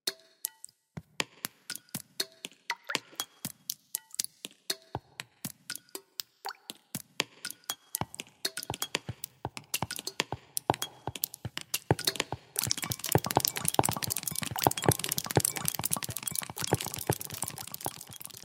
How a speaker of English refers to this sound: I like this. I like when the raindrop hits the dirt, big clunk. Yeah, it captures all the different sounds rain makes as it hits different surfaces.